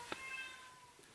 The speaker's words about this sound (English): I can hear the furry cobra in the background there. Meowing up a storm.